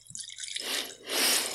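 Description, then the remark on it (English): A drink for tasting is poured neat into a glass in two short, splashy bursts, the second fuller and steadier than the first, with no talking. “Let's pour it and try it neat.”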